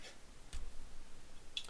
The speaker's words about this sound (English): Just a second. I'm typing down these notes.